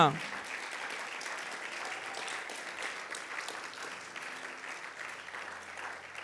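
A steady round of applause from a crowd after a prayer: dense clapping that holds at an even level for several seconds and tapers slightly toward the end, with no voices standing out.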